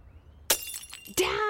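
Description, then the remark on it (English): A glass bottle drops and smashes: a sharp crash with scattering shards, then a second loud burst of breaking glass with bright, ringing fragments. “I know glass bottles make less CO2, but they don't reduce the number of klutzes on the planet.”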